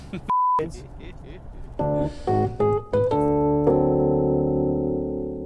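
A brief electronic beep gives way to a short, punchy musical sting: a few staccato synth chords in quick succession, then a final held chord that rings out and slowly fades.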